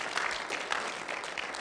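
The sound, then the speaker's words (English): Steady applause from an audience, a dense wash of many hands clapping continuously at a moderate level with no voices standing out, given for a woman as she goes back to her seat. “Give her a round of applause as she goes back to her seat.”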